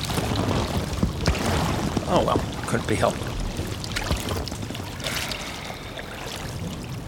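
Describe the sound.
A man urinating into a boat, a steady splashing trickle of liquid running for several seconds, close by, with a man speaking briefly over it.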